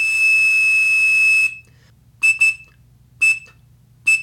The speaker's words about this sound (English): he could generate a tone at precisely 2600 hertz, which was a command tone for AT&T, actually Mob Bell at the time, voice telephone systems. And he could make free long-distance calls that way. And it even sounds almost like those Quindar tones.